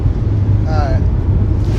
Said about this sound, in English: It's hot as fuck and you turn on the AC, but let's do that real quick. Quick maneuver.